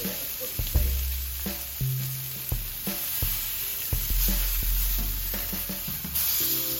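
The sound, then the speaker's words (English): Steady, loud sizzling of a steak frying in a hot pan, with repeated low thumps and scrapes as it is moved and flipped over the constant crackle. No one speaks. “Let's flip it.”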